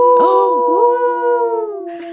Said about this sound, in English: It's not a chicken, guys. It is, of course, the wolf howl.